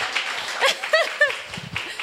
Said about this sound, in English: Hand clap of praise.